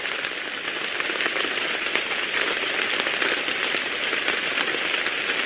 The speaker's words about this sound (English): So now we move on to our intermission, which is Caitlin presents Rain on the Lake. Ooh. Should be relaxing.